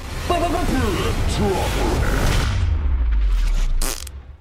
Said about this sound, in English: I love that fart noise at the end. Me too. I love the fart noise at the end.